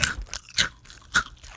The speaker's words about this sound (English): ASMR, goldfish ASMR. This is both … and I chewing